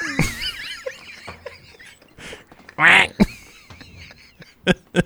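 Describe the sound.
A person imitates a duck, letting out a few nasal, buzzy quacks, with one loud, drawn-out quack in the middle and some short clicks and bumps between them.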